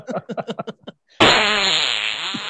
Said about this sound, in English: I'm embarrassed how much I'm laughing about the fart sounds.